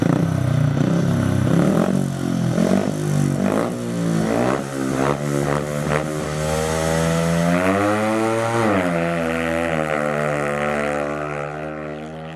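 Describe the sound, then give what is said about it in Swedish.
Several high-revving speedway motorcycle engines, on bikes without brakes, roar loudly at a motor stadium, pitches climbing and swooping together as the bikes race past at 110 km/h or faster, with no voices. “jag glömmer aldrig de där första stunderna på motorstadion när man inser att här kommer de dundrandes i 110 km i timmen och snabbare än det ibland på motorcyklar utan bromsar.”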